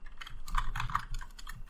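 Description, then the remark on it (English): Rapid clicking of keys on a computer keyboard while typing a message in a chat, a quick irregular burst of taps over a low background hum, with no one speaking. “I'm typing in my secret chat that I want to blow up the facility now.”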